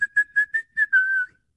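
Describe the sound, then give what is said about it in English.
A person whistles a brief tune: five quick, bright notes followed by one longer held note that trails off, clear and alone with no talking. “He's twirling it around his finger, you know, back and forth as he's walking, whistling.”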